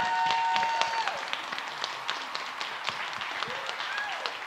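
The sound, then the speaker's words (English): A crowd applauds steadily for a group of performers lined up at the front of the stage taking a final bow, many hands clapping in a dense, continuous patter with a few faint whistles rising over it. “Everybody, please give them a round of applause for one final bow.”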